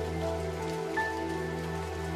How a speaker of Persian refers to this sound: باران ببار و تنگ حوصلگی مکن.